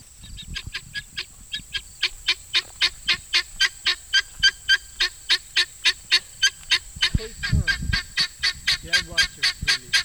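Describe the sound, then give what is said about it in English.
A bird perched on top of a large covered bale of straw calls loudly and insistently, a long run of sharp, honking notes repeated in a fast, steady rhythm, with a brief low rumble of other noise partway through. “I noticed one of the birds making a lot of noise on top of a large covered bale of straw.”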